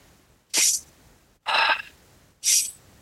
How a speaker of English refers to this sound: It's that Superman pose, and you just breathe deeply. So breathing in through your nose. And a long exhale through your mouth. Breathing in. Out.